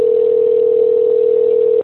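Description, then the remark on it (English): A steady, unbroken telephone tone on a call to a randomly selected contest winner hums at a constant level for almost two seconds, clear with no voices, then cuts off abruptly. “So let's call our first winner right now.”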